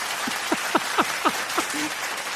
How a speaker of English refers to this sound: It sounds like they're clapping the exact same way every time.